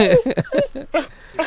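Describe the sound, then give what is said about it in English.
The dog Mahler whimpers in a run of five or six short, pitch-bending whines, fairly loud, with brief gaps between them and no other sounds. “For a dog that was building a Hadron Collider at one point in his life, I believe he would want a drone.”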